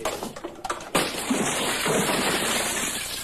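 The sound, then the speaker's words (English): A big liquor bottle thrown through the window of a studio recording booth smashes it with a sudden loud crash, followed by a sustained spray of shattering, tinkling glass that rings on for a couple of seconds. “And then she throws a big bottle of liquor through the window of his recording booth and completely shatters it.”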